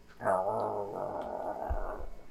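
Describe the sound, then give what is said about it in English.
A large mastiff named Richard Parker growls in one sustained, rumbling snarl lasting about two seconds, fairly loud, with no other sounds around it. “Richard Parker, the mastiff, stood by and growled.”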